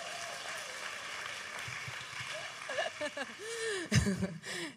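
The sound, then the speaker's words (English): A crowd claps in a steady, dense patter of applause, with scattered cheers, whoops and a bit of laughter rising over it toward the end. “Round of applause”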